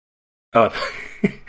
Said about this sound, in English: You can sing, but you can't cough. Well, I didn't want to cough on the mic. I'm sorry.